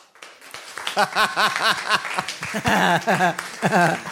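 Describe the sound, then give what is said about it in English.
An audience claps and cheers to vote for the answer "love", scattered hand claps mixed with rising and falling whoops and shouts from several voices, fairly loud and steady for a few seconds. “I don't want to do an applause-o-meter this whole fucking show, so I don't know how to get the audience reaction.”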